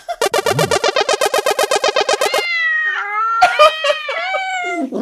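A cat meows loudly and close by. A quick stuttering burst of about twenty chirps leads into long, wavering, drawn-out meows with no one talking.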